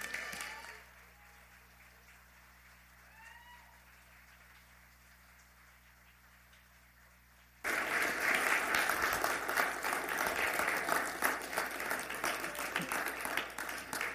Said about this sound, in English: Would you guys stand up and give a nice warm round of applause